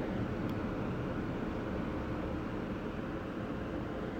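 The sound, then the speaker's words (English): Ocean waves make a steady, deep rushing roar that stays at an even loudness throughout, without distinct crashes or pauses. No one speaks. “Ready to listen deeply to waves and to notice your reaction as a distraction arises. Hear the waves.”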